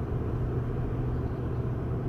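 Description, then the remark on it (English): A pickup truck with a hemi (hemispheric) engine drives along with a steady, deep engine and road rumble, heard from inside the cab as a continuous low drone that holds an even loudness throughout, with no voices. “Here I am driving a pickup truck with a friggin' hemispheric engine and a bunch of towels that I need to put through the laundry.”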